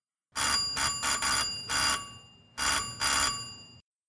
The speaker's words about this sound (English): What was that? Oh, nothing. I didn't hear anything. I thought I heard the doorbell. Oh, no. Next door, maybe.